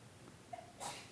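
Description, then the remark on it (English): A single quick sneeze, a short sharp burst of breath preceded by a faint intake, heard fairly quietly with no talking. “Bless you.”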